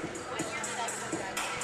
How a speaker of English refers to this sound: And again, a great crowd here on hand tonight, as you might expect with these two teams, even on a Monday night. And both are on the floor warming up.